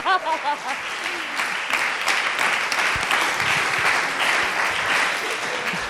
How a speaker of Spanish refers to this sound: Bueno, si vas a aplaudir, aplaude, porque eso suena como la pachero de bebé.